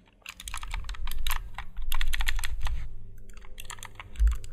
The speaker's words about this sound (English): Okay, so it is a keyboard for one hand. It has it's got 20 keys on it, and each key's programmable. And it's almost like a mouse. You hold it like a mouse,